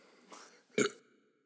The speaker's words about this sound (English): It tastes so good, I'm going to have it right now. Cheers, folks. Yeah, there's a burp coming in. It's good.